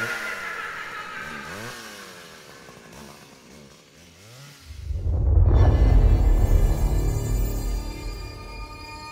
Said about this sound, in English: Gerald runs back towards the house, the maniac with the chainsaw close behind.